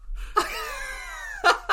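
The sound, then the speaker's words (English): A loud, theatrical sneeze: a sharp burst opens into a long, drawn-out voiced wail, then two quick breathy bursts close it out. “That was the greatest sneeze I've ever heard.”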